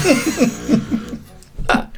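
A fart: a run of short, buzzy, pitched blurts that wobble up and down, followed after a brief pause by one louder, rougher burst. No one speaks.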